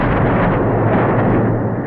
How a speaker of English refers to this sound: We don't know that it's Starfleet yet, but they bring down the phaser cannon from the Enterprise.